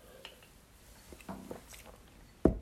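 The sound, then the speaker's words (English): Someone takes a long, quiet sip of water, with soft wet mouth noises and a couple of gulps, ending in a sudden sharp knock like a cup set down. “Sorry, that was a long sip of water.”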